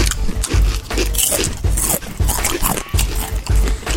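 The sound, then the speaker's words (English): Loud crunching of food with wet lip smacks, chewing in an irregular rhythm of bursts and short pauses, with no talking over it. “People closing their eyes and crunching. And some lip smacking.”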